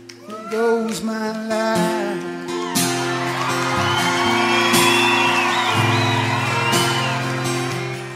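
An audience breaks into spontaneous loud applause and cheering with whoops and shouts, showing appreciation to the song's writer, rising over sustained music after a few seconds of singing and continuing steadily to the end.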